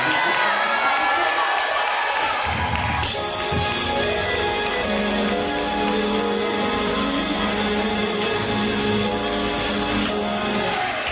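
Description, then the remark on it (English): A large audience erupts in loud, sustained shouting and cheering in praise of God, voices blending into a dense roar with whoops rising above it, continuing steadily throughout. “Somebody one more time, scream out and give God a shout of praise.”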